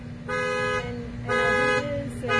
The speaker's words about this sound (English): And sorry guys, don't mind that. That's a car alarm. No worries.